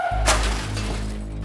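A sudden, loud crash of a racing car with a sharp shattering burst, followed by a sustained low engine-like rumble and hum that carries on steadily to the end, with no voices present.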